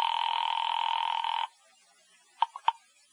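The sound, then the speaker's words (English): A steady telephone dial tone hums for about a second and a half, then cuts off, followed by three quick, short dialing beeps as a number is punched in at a phone booth on the corner. “So I limped as far as the phone booth on the corner.”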